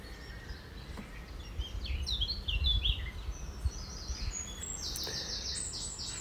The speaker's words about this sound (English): Taking the bird song.